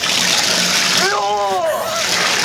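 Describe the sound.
Water sprays from a hose pipe used as a sound-effect prop, in a steady, loud, continuous hiss that lasts the whole clip, with a short voiced exclamation rising briefly over the spray midway.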